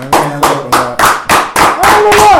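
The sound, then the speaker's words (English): About seven sharp hand claps in a steady, fairly quick rhythm, loud and crisp, with a voice sounding underneath them. “I really feel like clapping it up.”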